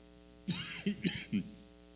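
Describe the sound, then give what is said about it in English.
A short burst of several loud, harsh coughs in quick succession from a person who has had a cough for days, with no talking around them. “Sorry about the cough there.”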